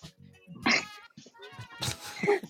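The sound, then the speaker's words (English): A few cats meow, with quieter mewing between two louder, drawn-out, wavering cries near the start and end. No one speaks. “He's still busy with the kitties.”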